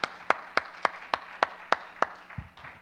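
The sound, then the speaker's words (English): An audience claps in steady unison for a couple marking seven years of living together, about nine sharp, evenly spaced claps at a brisk beat, moderately loud, followed by a dull low thump as the clapping trails off. “Another applause, come on.”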